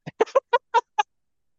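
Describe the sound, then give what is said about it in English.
A voice imitates a duck, letting out six quick, nasal quacks in a rapid uneven burst lasting about a second, clear with nothing else around it. “Dad, I'm scared of ducks now.”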